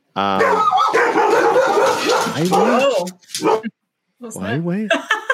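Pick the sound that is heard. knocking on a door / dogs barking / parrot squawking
dogs barking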